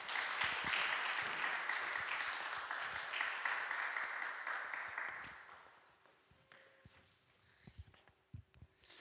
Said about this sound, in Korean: 우리 박수로 한번 환영하도록 하겠습니다.